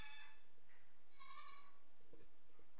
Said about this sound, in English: Okay, that was a weird one. That was a goat.